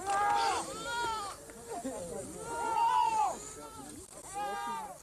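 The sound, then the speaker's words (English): Several goats bleat in a natural goat pen set in the middle of a standing clump of trees, in overlapping, wavering cries, one call following another almost without pause, loud and continuous over a low background rustle. “It's a natural goat pen in the middle of a standing clump, and where there is no trees in the circle, the roots are cut below the ground.”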